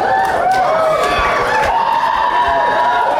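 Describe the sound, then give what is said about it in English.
A large audience at a DCU animated panel screams and cheers in a dense, sustained roar, with high-pitched shrieks and whoops rising above the steady din for several seconds. “Everybody that just screamed has pre-ordered Batman Year One, right?”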